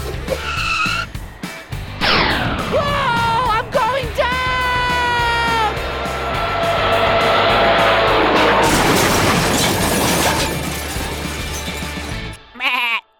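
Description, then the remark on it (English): Wavering whistles and goat-like bleats give way to a long, loud crashing and splintering racket as Bobby Wonder, flying, smashes through the roof of a barn, ending with one last short thud. No one speaks. “You just crashed through the roof of my barn.”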